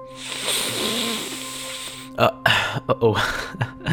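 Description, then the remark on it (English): A long, deep breath drawn in for about two seconds, breathy and slightly wheezy, followed by several short, voiced bursts that resemble speech. “I want you to start off by taking a nice, big, deep breath in along with me. Like this.”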